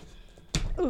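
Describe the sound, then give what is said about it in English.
A package box being handled and opened: a single dull thump, followed by a brief strained grunt of effort, with faint room noise beforehand. “It's been a while since people heard me grunting to open a box.”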